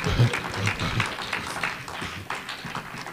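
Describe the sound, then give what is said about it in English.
A church crowd claps hands together in a dense, steady patter, with voices faintly mixed in beneath the clapping. “You better clap your hands or stomp your feet or I stomp you.”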